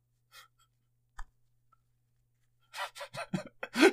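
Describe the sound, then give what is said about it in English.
A few soft clicks, then a quick flurry of breathy, crackling bursts: a voice imitating playing cards being shuffled by hand, growing louder toward the end. “I'm shuffling your cards.”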